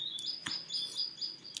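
A bird chirps in quick, high tweets, a steady run of bright calls over a faint background hiss, with a couple of soft clicks in between.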